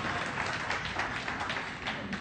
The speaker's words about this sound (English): Hey, everybody clap. Let's have some fun.